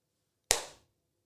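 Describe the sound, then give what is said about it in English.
One sharp, crisp hand clap rings out alone against silence, its bright snap fading quickly in a brief tail. “Start the clap.”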